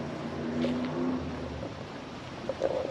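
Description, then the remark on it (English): Loud cars racing down a long road just outside a woods: engines roar continuously, a low droning hum with a higher whine that rises and shifts in pitch, like vehicles accelerating at speed. There is no speech. “There are so many loud cars just outside of this woods. Sounds like there's a racetrack or something.”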